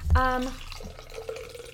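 Tea being poured into a cup on the floor next to the microphone, a steady trickling splash lasting under two seconds, preceded by a brief tonal hum at the start.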